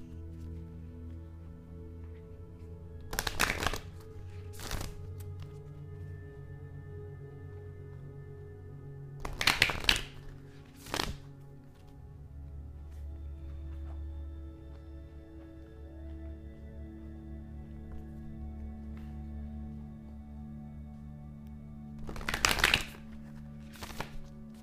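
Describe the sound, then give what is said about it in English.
Short, crisp bursts of self-care oracle cards being shuffled come in separate handfuls, a couple close together and another after a long pause, over a low, steady background hum with no one talking. “All right, let me shuffle the self-care ones real quick.”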